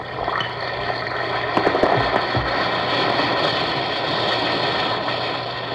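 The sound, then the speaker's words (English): An Alka-Seltzer effervescent tablet fizzes in water, a dense, steady crackling hiss that runs the whole time, with a few sharper pops early on over a faint low hum. “Listen to it fizz.”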